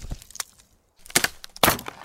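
A door being forced open with a new crowbar during a break-in: a couple of short cracks, a brief pause, then two loud, harsh bursts of splintering and breaking.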